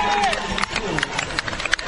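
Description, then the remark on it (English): A sold-out stadium crowd roars in a steady, dense din, with scattered shouts and claps popping out and a short whistle-like tone sliding down at the start. “We got a great crowd out here, actually.”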